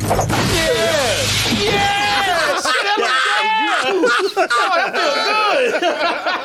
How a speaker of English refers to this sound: He used that guy to break some glass. He could easily get over, but nah, just to add insult to injury.